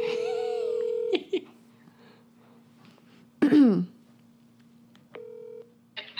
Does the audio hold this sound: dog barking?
no